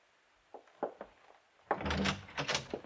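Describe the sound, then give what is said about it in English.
A few light clicks and knocks of a latch or handle, then a fuller, rushing scrape lasting about a second as a door is pulled open, fairly loud, with no voices. “Just open the door and walk right in.”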